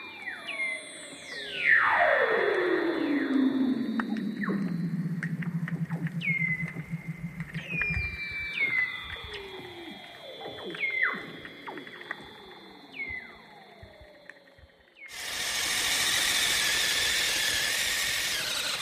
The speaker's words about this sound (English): I asked the seal researchers if we know what these calls mean, and no, we don't.